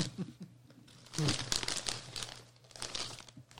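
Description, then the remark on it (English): Crunching Utz brand party mix from a crinkly bag: irregular bursts of crackling and crinkling plastic, with loud munching that swells and fades over a few seconds, and a faint voice briefly audible. “Every crunch is against the law.”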